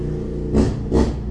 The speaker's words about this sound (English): See, was that needed? Was that really needed? He's just traveling down the street. Everything's fine. It's a little loud, and it's fine. I understand. It's a motorcycle. Yeah. It does make noise.